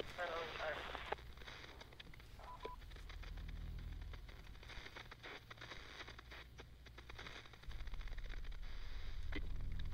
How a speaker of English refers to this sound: The fucking radio doesn't work. All we hear is static.